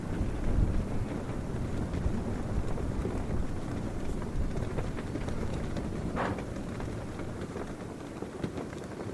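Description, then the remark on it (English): Colorful prayer flags flapping hard in a strong, steady wind, a loud rushing roar with irregular fluttering snaps and buffeting throughout, with no voices. “They were always furiously flapping in the wind.”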